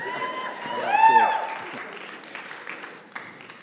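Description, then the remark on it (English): A church audience applauds, with high-pitched cheering girls' voices swelling loudly in the first second and a half, then steady scattered clapping carrying on beneath. “I'd like to hear some guy clapping something.”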